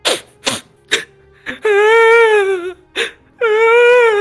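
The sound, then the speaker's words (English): A creature cries and whimpers: a few sharp, breathy sobbing gasps, then two drawn-out, wavering high wails separated by another sob. It is loud, with no talking. The crying is heard from two locations at once, one in front and one behind. “Just crying at your scary performance.”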